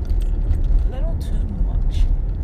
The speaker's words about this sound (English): Well, I feel like if I turn the AC, I mean, you can already hear the freaking engine in this car. And the AC added on is just a little too much.